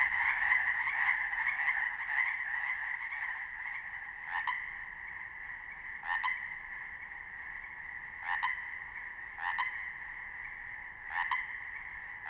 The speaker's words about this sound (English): I head into the forest, my headlamp lighting the way, and soon I home in on a rollicking ensemble of chorus frogs. Interesting for sure, but a bit cacophonous to my ear.